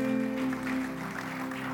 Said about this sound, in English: Give the Lord a clap offering in this house.